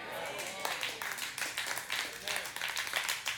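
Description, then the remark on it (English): A crowd applauds with steady, dense clapping that swells and dips in waves, while scattered voices call out beneath the sound. “All right, the claps are getting quieter.”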